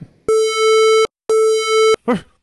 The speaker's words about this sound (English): All right, here we go. 3, 2, proximity alarm. On!